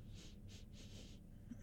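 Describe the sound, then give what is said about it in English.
Three quick, airy nasal sniffs in a row, the last one drawn out a little longer, fairly soft with no talking. “Specifically the nose. Yes, …. Sniff.”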